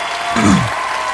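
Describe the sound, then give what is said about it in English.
A crowd claps steadily in a dense, even wash of applause that fills the short moment, briefly swelling a little in the middle; the clapping of the original crowd, reused in a cover song. “This is a cover of the other guy's crowd clapping.”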